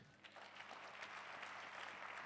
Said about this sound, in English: And somebody's going to clap their hands.